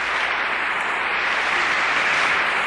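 A crowd applauds Zig steadily, a dense, continuous wash of clapping that stays loud and even throughout with no voices standing out.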